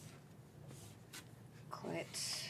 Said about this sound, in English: Let me see a piece of paper because I'm about to draw a diagram.